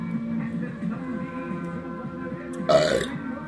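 A long, low, croaky burp rumbles on for a few seconds, ending in a brief louder burst of noisy air.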